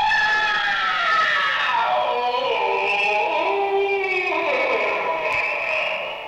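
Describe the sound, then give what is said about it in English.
A long, loud scream sound effect with a bright, harmonic tone that wavers and dips in pitch midway before climbing again, sustained for about six seconds with no talking. “Honestly, better than the Wilhelm scream for my money.”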